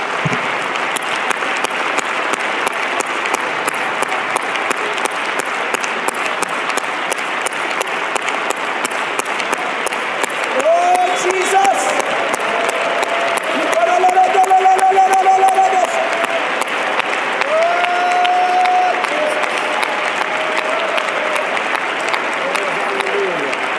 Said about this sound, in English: Let's give Jesus a great big hand clap of praise.